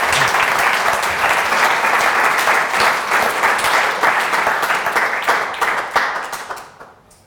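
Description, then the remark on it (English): An audience applauds steadily after a presentation, a dense wash of many hands clapping at once for several seconds before it thins out and fades away. “I think that deserves a round of applause.”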